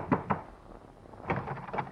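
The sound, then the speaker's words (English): Knocking on an apartment door: two quick raps, a short pause, then another cluster of knocks, moderately loud, with no voices. “Your hand trembles as you knock on the door.”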